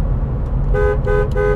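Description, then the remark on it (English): A car horn honks three times in quick succession, loud, over the steady low rumble of a running engine, honking at a family member in a small town in Texas. “There's my father-in-law, honked at him.”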